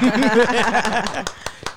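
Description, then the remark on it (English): A few sharp hand claps, about three, spaced evenly at the end after a stretch of lively, sing-song vocalizing, welcoming a special guest. The claps are crisp and moderately loud, each one brief. “Y'all wish this should have more claps.”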